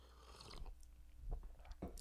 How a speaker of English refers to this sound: Sip my coffee.